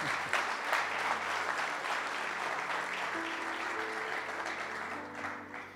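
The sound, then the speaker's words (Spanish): An audience breaks into sustained applause, a dense wash of clapping that holds steady for several seconds before easing slightly at the end, with no voices rising above it. “Alguien iba así, iba a aplaudir.”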